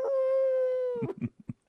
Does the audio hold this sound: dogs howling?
yes